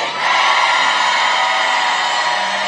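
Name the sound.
audience shouting amen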